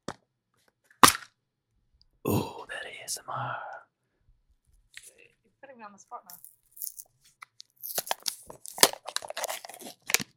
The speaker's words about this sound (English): I'm going to open this can of Pringles now. Yeah, go ahead. Yeah. This is snack time.